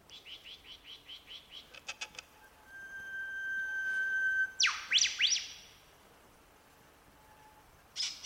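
A superb lyrebird, an Australian bird, runs through a varied song: a quick series of rhythmic notes, a long steady whistle, then loud sweeping chirps, with one last call after a pause. No one speaks.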